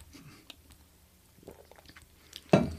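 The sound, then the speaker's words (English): Someone sips a drink, with quiet wet mouth sounds and small swallows, ending in a sudden louder burst of noise. “I'll take a sip too.”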